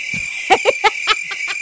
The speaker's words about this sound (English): These are better crickets, I think.